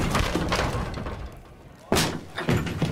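A tavern door bursts open with a loud, sharp bang partway through as a man in a trench coat pushes through it, followed shortly by a second heavy thud, set against a busy, murmuring background.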